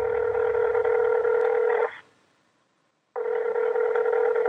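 A steady telephone line tone sounds loud, holding for about two seconds, falling silent for a second, then starting again, with no voices, as Dinesh places a phone call to Catherine Engelbrecht.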